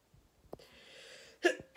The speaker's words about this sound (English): I've had a cough for like I've had a cough for, I think I first felt ill around this time last week, and now I'm on the coughing phase.